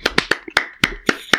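Hands clap in a short round of applause for a special guest on a show, about nine sharp, bright claps in a loose, uneven rhythm, with no voices over them.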